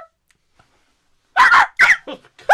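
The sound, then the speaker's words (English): A person imitates a high-pitched dog bark: after a quiet pause, three or four sharp, yappy vocal bursts come in quick succession, loud. “It's a dog. It's got a very high-pitched bark.”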